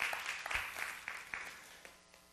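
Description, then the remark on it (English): An audience claps together, a dense burst of applause that quickly thins into a few scattered claps and fades out within a couple of seconds. “Amen, that's worth a hand clap.”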